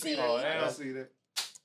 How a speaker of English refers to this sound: The woman power united. They slap their hands. Well, you ain't see us clap though. Slap no hands. Yeah, y'all didn't slap hands, but I see it.